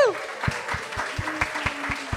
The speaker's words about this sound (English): Guys, give yourselves a huge round of applause. Thank you so much.